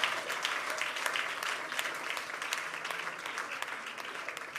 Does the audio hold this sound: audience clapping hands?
yes